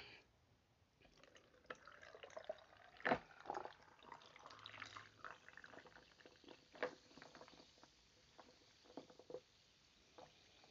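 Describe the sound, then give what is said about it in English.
A crisp apple drink is poured into a Pilsner glass over ice: a steady fizzing, gurgling pour broken by a few sharp clinks of ice shifting, with no talking. “Yeah, I got it right here in my Pilsner glass, and I got me some ice.”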